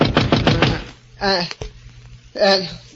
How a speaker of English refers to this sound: Then I fell into a deep sleep. And then a knock on the door awakened me.